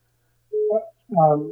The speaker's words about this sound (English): Especially because my phone rang in the middle of it.